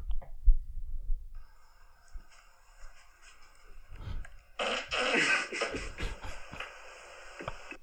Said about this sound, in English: That one's funny because it's a video of his sleeping partner and then he puts his ass right near her face and farts.